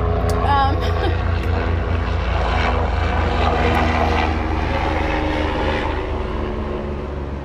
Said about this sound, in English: Sorry, y'all, we had a little interruption there with the airplane. I know you heard it, but just ignore it.